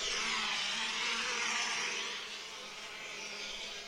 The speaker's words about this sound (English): Their friend stood like a statue, too scared to move. A swarm of bees buzzed around him.